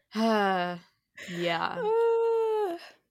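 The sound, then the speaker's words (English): A sleepy woman yawns aloud in two drawn-out, voiced stretches. The first is short and steady, and the second begins breathy before settling into a long, wavering tone that trails off. “Yawning to where she looks like a Peanuts character?”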